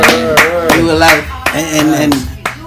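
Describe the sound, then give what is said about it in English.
Steady hand claps, about seven sharp slaps at an even, quick beat, with a voice sounding continuously underneath them. “Clapping for the new generation.”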